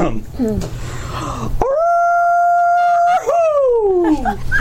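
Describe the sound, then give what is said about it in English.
A person lets out a long, loud, sustained howl in imitation of a dog or wolf, then a second howl that rises and slides downward, preceded by softer wavering vocal noises. “So, go ahead and give me your returning howl.”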